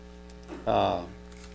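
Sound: microphone hum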